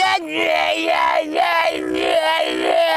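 A loud, dense music remix dominated by a strained, wailing vocal whose pitch bends and wavers in repeated swoops, sustained without a break for the full three seconds.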